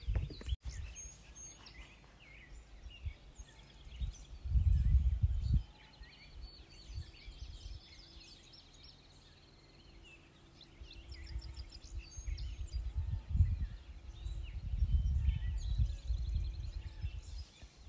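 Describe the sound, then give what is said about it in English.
Several different kinds of birds call and chirp outdoors, with high trilling songs and scattered tweets layered together, while low rumbling wind or background noise swells in and out beneath them. “Different kinds of birds, mostly, aren't they?”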